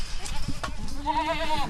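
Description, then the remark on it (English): A Boer goat lets out a single drawn-out, wavering bleat, fairly loud, over a faint background of outdoor rustle and shuffling, at a Boer goat breeding property in northwest Tasmania. “who breeds boar goats at his property in northwest Tasmania”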